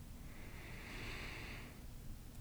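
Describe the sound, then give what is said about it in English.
A single deep belly breath drawn in during a guided practice, heard as a soft, airy hiss that swells and then fades over about a second, quiet and with no talking. “Breathing in.”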